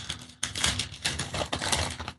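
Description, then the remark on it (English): Crisp paper crinkling and tearing in several rustling bursts as a brown paper package tied with twine, holding a book, is unwrapped, with no voices. “I realize that this is how I'm going to wrap all presents from now on. Brown paper wrapped in twine. All right. Opening this.”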